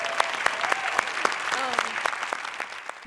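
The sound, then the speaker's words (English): An audience at the Grammys claps steadily in a fairly even rhythm, with scattered cheers and whoops rising over the applause for about three seconds, moderately loud. “Can we just cheer for”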